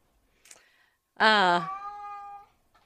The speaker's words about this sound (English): Can you guys hear the cat? I mean, seriously, he's making lots of noise.